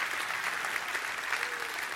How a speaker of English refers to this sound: Clap your hands and say, I love that.